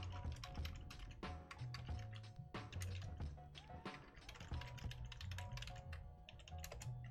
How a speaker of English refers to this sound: Oh my gosh, I just pressed like every button on my keyboard at the same time. My computer is like having a cow.